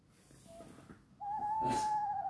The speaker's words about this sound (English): That's an owl. Is that an owl? I thought it was like a swallow. I don't know. Like, you're right, baby. It's an owl.